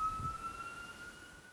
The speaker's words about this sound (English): Can you guys hear sirens? I do.